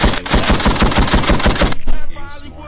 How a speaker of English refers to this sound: My son KD, gunshots for KD. Got 29 points on France, man.